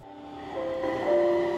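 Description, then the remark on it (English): A Taipei Metro train hums and whines steadily through Taipei Main Station at rush hour, its tonal motor pitch rising and growing louder over a second and a half, with no voices standing out. “It's rush hour at Taipei Main Station, and office workers are out in force.”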